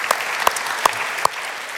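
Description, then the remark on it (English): An audience at a morning church service applauds to welcome guests, in a dense, steady crackle of many hands clapping, with four louder, sharper claps standing out at roughly even intervals. No one speaks over it. “Hey, while we've been clapping a lot, but could we just welcome our guests this morning and say thanks for being with us.”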